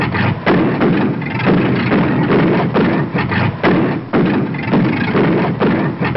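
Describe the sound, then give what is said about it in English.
A cosmic surface car, supercharged with super fuel, roars loudly and steadily, its heavy engine rumble pulsing in a rough, repeating rhythm with thudding surges about twice a second. No one speaks. “Boy, that cosmic surface car is really roaring.”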